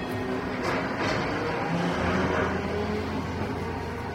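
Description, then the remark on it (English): A trolley bus rumbles steadily, its electric motor giving off a low, sustained hum and whine over the rolling road noise, with no one talking. “I had some really, really favorite sounds. Trolley bus?”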